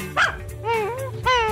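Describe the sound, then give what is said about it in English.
A dog lets out a sharp bark, then two long, wavering whimpers. It is fairly loud, with no voices. “There's a good dog.”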